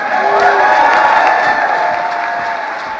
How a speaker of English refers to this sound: The applause goes on. It's a big room in the White House, and the applause continues, and Jill Biden is spurring it on.